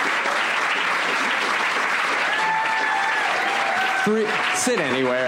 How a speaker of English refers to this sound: So without any more of me talking, please give a round of applause to all of our panelists, Phil Rosenthal, Brian Fuller, Kathleen McCaffrey, and Noah Hawley.